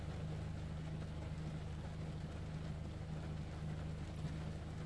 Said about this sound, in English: It's a Saturday for me, and sitting in my car. It's raining.